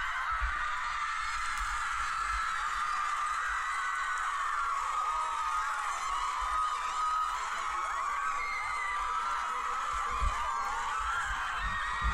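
A large crowd cheers and screams in the stands after the Raiders win the fourth set 25-16 to reach the championship game against Smyrna, a dense, steady roar of many high voices that holds at full intensity for the whole stretch without letting up.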